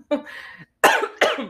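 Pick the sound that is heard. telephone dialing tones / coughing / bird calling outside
coughing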